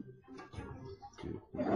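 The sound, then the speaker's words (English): A rough, growling roar of the monster called the Devourer, roaring toward the listener, that rumbles unevenly before swelling into a loud, harsh blast at the end, heard on its own without any talking. “Roar towards you.”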